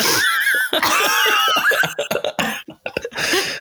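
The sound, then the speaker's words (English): A loud bout of coughing: a rapid string of harsh, raspy coughs and wheezy gasps repeating for several seconds, with brief pauses between bursts. “Sorry, I've got to cough.”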